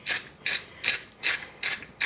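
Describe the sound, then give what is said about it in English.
A salt grinder being twisted to grind coarse sea salt as seasoning, making six rhythmic bursts of gritty, crunchy grinding at a steady pace with short pauses between, fairly bright and scratchy, with no talking. “I'm gonna use a coarse sea salt I happen to prefer. Just grind it in there.”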